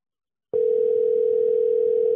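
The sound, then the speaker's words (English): A telephone ringing tone on a call to a radio station's listener line: a steady, unbroken electronic hum begins abruptly after a short silence and holds at an even, moderate loudness, with no voices. “It's ringing.”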